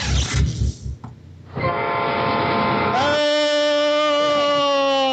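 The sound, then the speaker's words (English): A train roars by with a rumbling rush, then its horn blares loudly in a long, steady blast that swells even louder and holds to the end. “Why am I strapped to the front of a train?”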